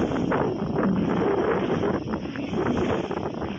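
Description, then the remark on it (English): Steady, loud wind buffets the microphone outdoors, a dense rumbling roar with gusty swells and no clear pauses, filling the whole stretch without any voices. “a little windy right now.”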